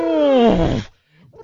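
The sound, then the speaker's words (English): A lion roar sound effect: one loud, rough, harmonic bellow that slides downward in pitch and cuts off after under a second, followed by a brief, fainter rumble. “That's a lion with a plascock.”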